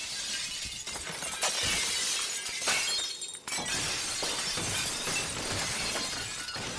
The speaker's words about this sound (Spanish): Abrazó el faro y arañó los vidrios que cayeron hechos trizas sobre nosotros.